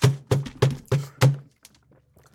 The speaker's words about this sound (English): Who is slamming the counter while I'm doing liquid? Someone just slammed something twice.